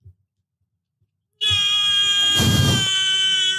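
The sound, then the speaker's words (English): After a brief silence, a person voices a loud, strained imitation of a horse's whinny: a sustained high, buzzing tone with a rough, breathy surge in the middle, held to the end. “Is that a horse noise?”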